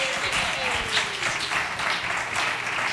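A crowd applauds the winners of a rock-paper-scissors game at a show, a dense wash of many hands clapping at once, sustained and fairly loud throughout with a faint murmur of voices underneath.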